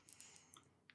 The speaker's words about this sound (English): I'm frantically clicking on these car links.